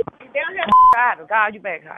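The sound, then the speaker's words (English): A single short electronic telephone keypad beep, as a three-way call is dialed, sounds loudly in a brief pause between stretches of a woman talking. “So I need you to call on three ways.”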